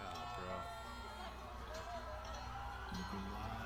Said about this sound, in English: Oh, everyone's all screaming.